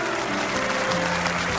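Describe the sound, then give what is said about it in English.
A crowd applauds an agreement steadily, a dense wash of clapping hands at an even, fairly loud level with a few faint tonal hums running underneath. “Thank you for applauding an agreement.”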